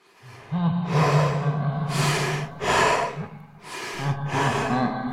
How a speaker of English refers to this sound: What he breathing so hard for? No, oh, I hear it. It's like... I right side for sure. How do animatronics have asthma? Oh my god, that's so embarrassing for them. They just have very musky, musky, husky breath.